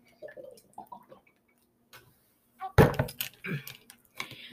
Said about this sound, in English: Another thing, what I'm fixing to drink, water. I'm fixing to drink water right now.